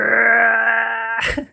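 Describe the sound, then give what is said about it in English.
A voice imitates the Howie scream stock sound effect: one loud, sustained, steady-pitched cry lasting over a second, breaking off into a short, rough burst at the end. “There's the Howie scream that is like the...”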